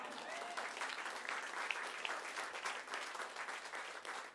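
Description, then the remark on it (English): Audience applause at a public reading, clapping for Pasadena Literary Alliance, fills the whole clip: a dense, steady wash of many hands clapping at an even level, with a couple of brighter individual claps standing out. No one speaks. “Clap and then cross your fingers for 2019.”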